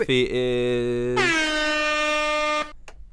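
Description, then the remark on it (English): A loud, sustained air horn blares for over two seconds, its pitch jumping higher partway through before cutting off abruptly, with a faint click after. “It's air horn, actually.”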